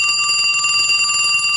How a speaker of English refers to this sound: What's going on here? Was that a phone?